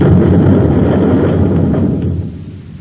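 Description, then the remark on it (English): A loud, deep rumbling roar of blasts from nose rockets pounding a plant, like heavy explosions hitting a structure, holds steady for a couple of seconds before beginning to fade, with no voices. “They've torn up a whole hunk of the plant with their nose rockets.”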